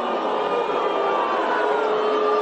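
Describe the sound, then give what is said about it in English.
A large crowd boos New York City Mayor Bill de Blasio loudly and without pause, a dense, sustained wall of overlapping voices with drawn-out low tones running through it. “He gets booed.”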